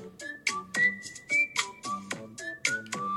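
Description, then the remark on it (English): Bright, bouncy Nintendo-style video game music: a steady run of short plucked synth notes under a sustained, whistle-like lead melody, played alone with no voices. “And then on the rare occasion that I'm not anxious and full of anxiety, this is what my brain sounds like. And it's nice. Both Nintendo music, but you know.”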